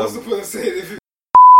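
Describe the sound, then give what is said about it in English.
A person talks for about a second, then after a brief silence a loud, steady censor bleep tone starts abruptly and holds to the end. “I'll beep it.”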